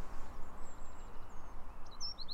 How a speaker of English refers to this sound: that it's firing off at the end of its song, or it's been wound up and it's got so much volume and energy that by the end of the song it can't contain it and it just rattles out. So yeah, that's definitely my favourite bird song, the wren.